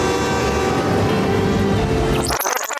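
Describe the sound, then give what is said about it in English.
A loud, dense rumble of an oncoming train fills the scene with sustained horn-like tones, then abruptly cuts to a sparse clattering texture near the end. “there's a train coming!”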